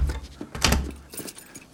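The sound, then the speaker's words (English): A door swings shut with a solid thump about halfway through, followed by a light metallic rattle of the latch settling. No one speaks. “Close the door.”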